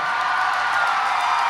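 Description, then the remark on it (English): An audience cheers for the city of Austin, Texas, in a steady, dense roar that holds at the same loudness throughout the short stretch, with no single voice standing out. “You're cheering for a city that has this person in it.”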